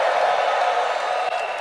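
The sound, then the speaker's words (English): A large church audience roars with sustained shouting and cheering in praise of God, a dense, loud wall of voices that holds steady without a break, with no single speaker standing out. “Come on, give God a shout of praise.”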